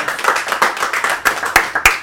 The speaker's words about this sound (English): Give him a round of applause, well, everybody.